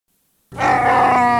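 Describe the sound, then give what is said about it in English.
After a brief silence, a loud, sustained creature growl erupts and holds steady, a rich, groaning roar blended from camel, whale and hippo sounds, alone with no talking. “It's a camel, a whale, and a hippo.”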